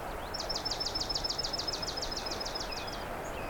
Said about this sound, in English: Oh, white crown sparrow. That would be a migrant.